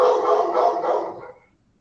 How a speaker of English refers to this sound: Yeah, my dog is going. Let me see what the hell's going on.